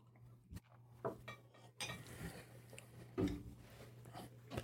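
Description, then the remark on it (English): Bourbon is poured into a glass during a blind tasting, a steady splashing trickle preceded and punctuated by a few sharp glassy clinks, with a low electrical hum underneath and no one speaking. “So here's your last pour. This is the last one.”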